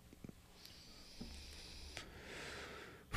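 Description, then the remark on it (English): A breathy sniff of about a second draws air in through the nose as a person smells a glass of smoky rye whiskey, preceded by a few faint clicks and taps in an otherwise quiet space. “Can I give that a sniff? Yeah. I'm going to smell it.”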